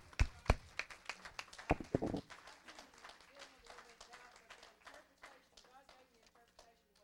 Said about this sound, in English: Give the Lord a big hand clap. Thank you, Jesus. Hallelujah.